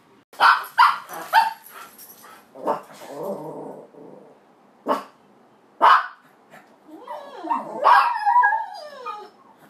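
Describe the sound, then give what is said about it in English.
A dog lets out a burst of sharp, high-pitched barks, then quieter whines and yelps, ending in rising, wavering howl-like cries of excitement, fairly loud with no talking. “This is a high frequency sound and is generally constant or a series of sequences.”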